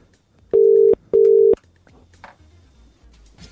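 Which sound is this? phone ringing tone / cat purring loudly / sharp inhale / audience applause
phone ringing tone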